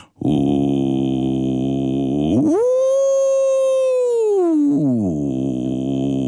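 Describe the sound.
A single human voice in a studio imitates whale song, sustaining a loud, steady tone that swoops sharply upward, holds a long high wail, then slides back down to a lower hum.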